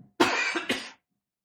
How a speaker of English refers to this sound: Hold on, I have to cough.